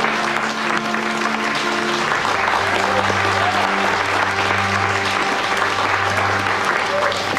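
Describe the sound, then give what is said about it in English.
Steady, dense applause from many hands fills the whole stretch at an even loudness, with a low hum of voices and tones murmuring underneath, as in a courtroom after adjournment. “Oh, we got applause.”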